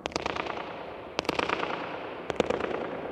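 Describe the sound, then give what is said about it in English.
Three sharp claps inside a dome, each spaced about a second apart, are followed by a rapid fluttering train of echoes that rattle back quickly and fade. No one speaks. “You can hear the sound repeatedly bouncing and being focused back to me.”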